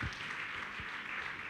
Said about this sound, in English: Clap your hands for Jesus.